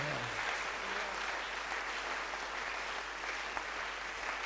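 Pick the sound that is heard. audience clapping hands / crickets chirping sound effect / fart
audience clapping hands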